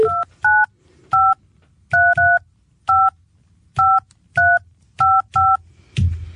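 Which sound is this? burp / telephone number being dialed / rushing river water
telephone number being dialed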